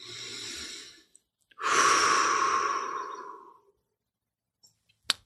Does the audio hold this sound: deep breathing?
yes